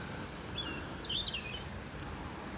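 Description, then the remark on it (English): Several small birds, including robins and a brambling, chirp and tweet in short, high bursts scattered across a few seconds around a stable where food is put out for alpacas, fairly faint against a steady outdoor background hiss on a very cold, frozen day. No one speaks. “I, of course, put the food out for the alpacas, but the birds come.”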